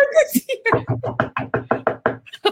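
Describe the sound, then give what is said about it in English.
A voice imitates knocking on a door as a sound effect, with a quick, even run of about nine or ten punchy 'knock' sounds, fairly loud, with a brief vocal noise at the start. “Room service. Oh, no, it's actually her door.”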